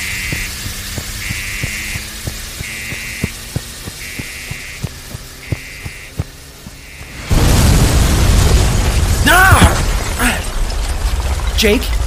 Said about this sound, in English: I saw an explosion from across the street.